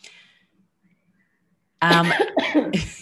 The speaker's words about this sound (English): I knew there was a cough coming, so I thought I'm just going to wait and we can edit it out.